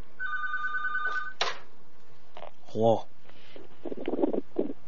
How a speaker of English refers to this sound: And a phone call is coming on the telephone machine. Let's see who this is.